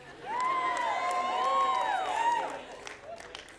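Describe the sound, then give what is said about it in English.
An audience boos the speaker for having gone to St. John, many voices holding long, wavering tones together for about two seconds before the sound fades into scattered crowd noise. “I just got so distracted because you booed me for going to St. John.”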